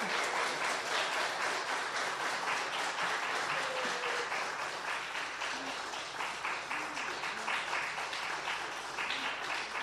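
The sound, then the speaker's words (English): A crowd applauds steadily for the full ten seconds after a baptism, cheering for the person just baptized, a dense, loud wash of clapping with faint cheering voices mixed in, never letting up. “Yeah, a lot of people cheering for you, sweetheart.”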